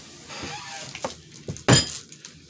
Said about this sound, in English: Don't slam your mug on my table.